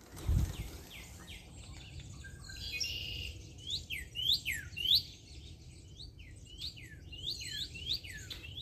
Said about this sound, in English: Okay, these birds are crazy. Listen to this.